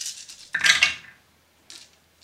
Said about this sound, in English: Reroll all my dice.